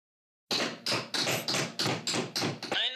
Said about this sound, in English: At that moment, running footsteps were heard.